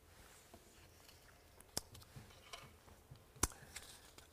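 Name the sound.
shuffling through papers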